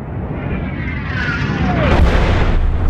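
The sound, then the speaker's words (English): A descending whistle falls in pitch over a steady roar, then a meteorite slams down in a loud, booming impact explosion with a deep rumble, striking a snowy landscape and leaving steam rising from the impact site. No one speaks. “As the steam rises from the impact site of the meteorite, a solitary pair of figures make their way across the otherwise empty tracks of endless snow.”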